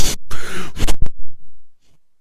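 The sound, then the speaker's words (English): A voice imitates heavy, hard breathing, mimicking Vanderlei on Skype at a press conference: a few loud, rough, breathy huffs in quick succession, then a faint final exhale. “press conference breathing really hard, and Matt Mitrione just started pissing himself laughing up on the stage.”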